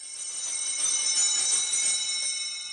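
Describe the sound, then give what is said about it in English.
Small altar bells, rung by an altar server at Mass, ring in a sustained, bright, shimmering peal that holds steady for a few seconds, moderately loud, with no voices. “I love serving Mass, and I loved ringing the bell, and I loved getting the altar and wine and giving it to the priest, and I really, really, I loved every minute of it.”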